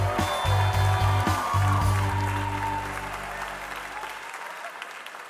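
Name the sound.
theater audience applauding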